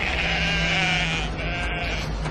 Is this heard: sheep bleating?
yes